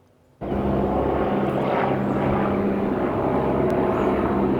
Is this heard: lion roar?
no